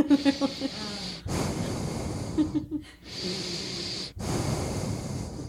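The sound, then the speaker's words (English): Loud nasal breathing rushes straight into the microphone in several long, noisy inhales and exhales, opening with a short voiced, snorting sound. “I can hear you breathing. You're like... Did you hear me fart? It's like your nostrils can't.”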